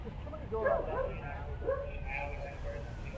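A dog barks and whimpers in a few short, strained bursts over a steady low hum, the yelps rising and falling in pitch as if the animal is agitated.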